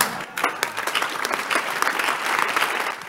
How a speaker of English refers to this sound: I am glad for the bad clapping, but let me explain.